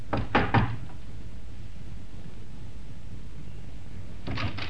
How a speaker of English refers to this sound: The lock on the door fascinated him. The urge to try out the key in his pocket was almost overwhelming. But instead, he knocked.